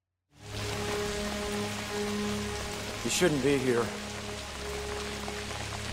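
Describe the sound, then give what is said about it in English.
Steady rain pours down throughout a film scene in which Natasha stands in the rain with an umbrella, a dense continuous hiss pattering on surfaces, with a brief spoken line from a man cutting through the middle. “We pull back to see that Natasha is standing there in the rain with an umbrella behind him.”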